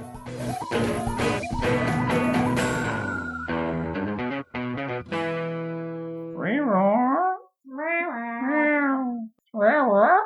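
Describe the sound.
After a brief burst of bright musical chords, human voices imitate the call of the Flophouse house cat three times: drawn-out, wavering, warbly meows, fairly loud, separated by short pauses.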